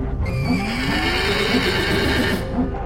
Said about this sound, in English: The horses neighed and pounded their hooves, and the sheep bleated wildly.